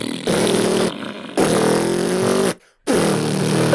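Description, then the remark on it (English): A voice imitates the zipper at the top of a guitar case with three loud, raspy buzzing bursts separated by short pauses, each low and rumbling enough to resemble a revving engine. “I can't do fucking zipper noise.”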